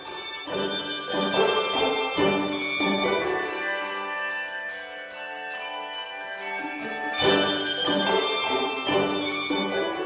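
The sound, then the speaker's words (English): A handbell ensemble plays a melodic piece, bright struck tones ringing and overlapping into sustained chords with a steady rhythmic pulse, fairly loud, with no voices. “Maybe you've seen a handbell choir in church around Christmas time or in schools.”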